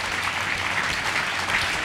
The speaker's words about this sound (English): Yeah, I think that's worth a clap.